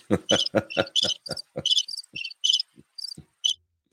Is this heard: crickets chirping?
yes